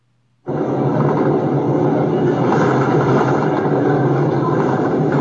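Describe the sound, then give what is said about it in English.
A bus engine suddenly kicks in with a loud, steady rumbling roar that stays continuous, with a broad wash of road and traffic noise and no voices, on a sunny day of about 26 degrees. “Bus life.”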